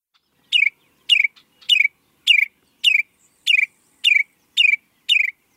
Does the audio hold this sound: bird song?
yes